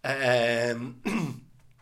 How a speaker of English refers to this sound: sorry, I just had to cough there. Oh my God, I was like, is everything okay? I don't know. I think I might be choking to death.